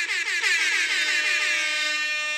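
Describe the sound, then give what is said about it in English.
A loud, blaring air horn on a little buzzer device sounds continuously for a couple of seconds, its harsh, brassy tone holding steady with a slight wavering at the start, alone with no talking. “I need the little buzzer with the air horn on it.”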